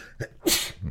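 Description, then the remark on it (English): A single sharp sneeze bursts out, a quick intake of breath followed by a loud, hissy expulsion that trails off in under a second. “bless you.”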